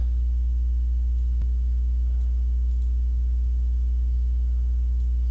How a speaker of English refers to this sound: I can hear that hard drive going like crazy. Making so much noise, even causing my desk to vibrate. I'm not kidding. I am not kidding. It's ludicrous.